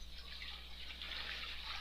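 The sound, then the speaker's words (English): Steady rushing water fills the whole stretch, a toilet flushing blended with rainwater pouring from gutters during heavy rain, recorded in a basement in Georgia. It is continuous and fairly soft, with a faint low electrical hum underneath and no voices. “That sound you hear is not only a toilet flushing, but the damn water running out of the gutters.”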